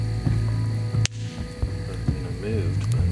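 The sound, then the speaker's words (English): A two-meter radio outdoors crackles to life with a steady static hum and buzzing tones, a sharp burst of noise cutting through about a second in, then warbling garbled transmission underneath. “Okay, 2 meter goes off. There we go.”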